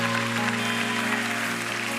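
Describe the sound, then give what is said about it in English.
A church audience claps steadily and continuously while people come up to the front, a dense, even wash of many hands, with sustained musical tones holding underneath throughout. “Come on, y'all, don't stop clapping until people stop coming.”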